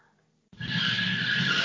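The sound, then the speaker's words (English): After a brief quiet moment, a loud, sustained screech of tires skidding erupts as two cars drive away at the same time, with engine rumble underneath and no voices. “And there he is, just looking so brutish as two cars drive away at the same time.”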